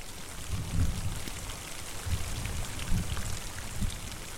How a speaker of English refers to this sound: The rain, when it begins, comes slowly, like grace.